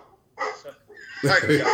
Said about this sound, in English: There's a rabbit in the yard and the dogs are not happy.